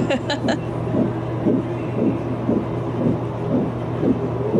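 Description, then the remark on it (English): A fast, steady whooshing pulse of a fetal heartbeat from an ultrasound, played back from a video, about two beats per second over a constant low hum, with a brief burst of higher noise at the start. “So I sent him a video of the heartbeat and like whatever. Yeah, this is what it sounded like in the video.”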